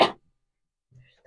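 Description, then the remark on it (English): A single loud, sharp cough from a person wearing a mask bursts right up against the microphone, then cuts off into near silence, followed by a faint rustle and the start of another breathy burst. “Just coughed really loud into the mic.”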